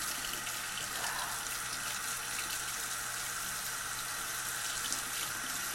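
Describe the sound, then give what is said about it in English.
A tap runs steadily into a sink, a constant rushing hiss of water that holds even for the whole stretch, with no talking; the water is not heating up. “My water is not wanting to heat up.”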